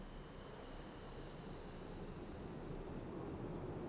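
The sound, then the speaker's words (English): A steady, broad roar of an airplane flying overhead, a continuous rushing rumble that holds even and fairly faint throughout, with no voices. “Tried to get that to reroute traffic just for tonight, but they said we're too loud.”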